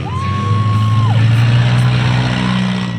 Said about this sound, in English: They line up in formation, gun the engines, and head toward the field of battle. And then it's on.